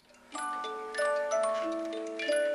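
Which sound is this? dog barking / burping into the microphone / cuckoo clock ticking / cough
cuckoo clock ticking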